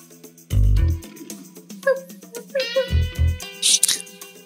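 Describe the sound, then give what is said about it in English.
Someone imitates a female dog being called over, with short whiny, yelping vocal noises, mixed with a couple of heavy low thumps and a brief breathy hiss near the end. “Dog noises.”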